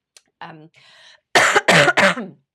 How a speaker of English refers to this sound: Also got a bit of a cough, sorry.